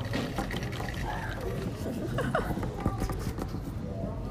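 liquid being poured

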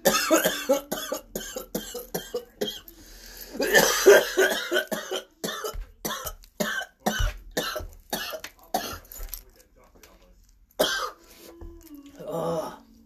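coughing fit

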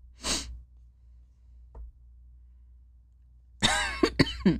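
coughing fit

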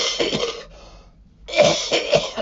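cough

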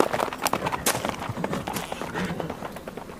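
horse hooves clip-clopping away

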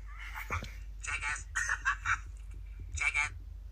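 phone notification sound

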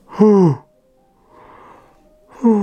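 human yawn

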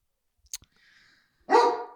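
dog barking

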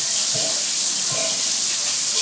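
shower water running

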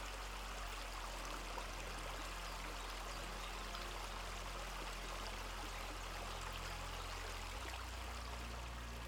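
flowing stream water

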